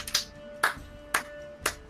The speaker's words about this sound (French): Est-ce qu'on peut avoir un applaudissement? Bah voilà. Voilà. Mais c'est le seul, si tu veux.